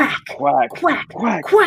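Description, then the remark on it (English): A person imitates a duck in reference to the Mighty Ducks movies, letting out about four quick, nasal quacking calls in a row, loud with short breaks between them. “Quack.”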